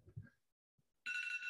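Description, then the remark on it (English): A phone timer alarm suddenly starts ringing, a loud, steady electronic tone with bright stacked harmonics, after a brief low rustle and some quiet. “Oops, sorry. That was my timer.”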